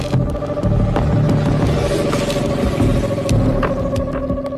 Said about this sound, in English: The goods arrived by motorbike.